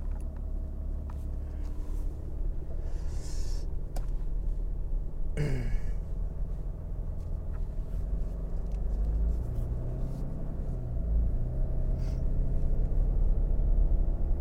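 A truck rolls out of a driveway into traffic on a warm day, its engine a steady low rumble throughout, with a brief whining sweep partway through and the motor swelling slightly toward the end.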